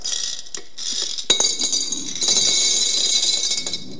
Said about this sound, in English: All right. So we will pour this in to this jar.